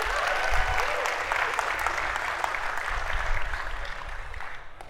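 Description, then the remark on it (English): A crowd claps steadily in a sustained round of applause given for a very good rendition. It is a dense wash of overlapping hand claps that holds at a fairly even level for several seconds before tapering slightly at the end. “Let's give Jordy a round of applause.”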